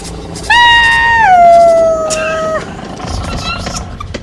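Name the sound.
voice imitating a foghorn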